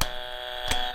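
A steady electric buzzer drones for about a second, a rich, harsh tone with bright overtones, marked by two sharp clicks, one at the start and another near the end, as the button is pressed.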